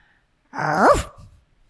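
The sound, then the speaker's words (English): A single dog woof, a short, loud bark with a rising then falling pitch that trails off into a brief low rumble, heard on its own with no one talking. “Woof time.”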